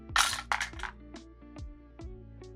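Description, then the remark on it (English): Dice clatter across a table in a quick burst of bright, hard clicks, then settle with a few scattered, fainter taps, the roll coming to 11. No voices are heard. “I see what I need to roll then.”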